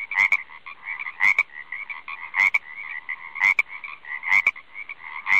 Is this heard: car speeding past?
no